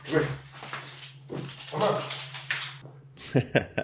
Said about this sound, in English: Can you hear these dogs? Let me get these dogs out of here. Sorry.